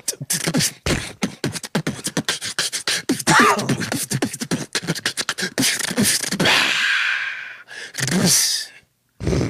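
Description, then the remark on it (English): Loud heavy breathing, rapid gasping breaths in quick succession like someone panting hard and out of breath, with a few longer drawn-out exhales near the end. “I'm almost out of breath.”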